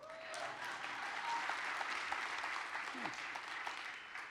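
The audience at the 9 o'clock service claps steadily, a dense, sustained wash of applause that holds at an even level for several seconds with no break.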